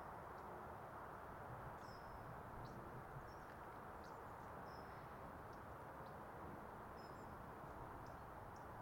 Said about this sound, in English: Yeah, I didn't recognise that high-pitched bird. Trying to think what it would be. It's very familiar. It'll be something that everyone's seen.